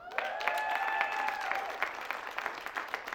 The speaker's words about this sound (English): So we have, go ahead and hold your applause.